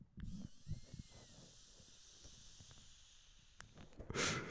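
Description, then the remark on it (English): A long, steady airy hiss of someone drawing in a puff of smoke, with a faint high whine over it and soft low crackles, ending in a brief louder burst of breath. “Do you hear that? That's me taking a puff.”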